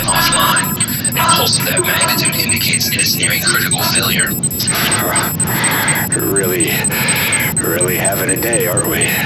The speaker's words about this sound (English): Shut off these alarms.